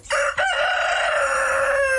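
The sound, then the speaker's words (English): A rooster crows loudly, one long sustained cock-a-doodle-doo with a brief catch near the start, ringing out on its own without any talking. “Here's chicken number two.”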